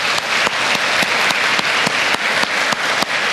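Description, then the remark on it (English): A church audience claps for the youth who led worship, many hands making a dense, bright wash of applause with a few sharper individual claps cutting through at a quick, fairly regular pace, loud throughout with no voices heard. “Let's give our youth another round of applause for leading us in worship today.”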